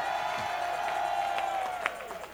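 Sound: audience shouting and clapping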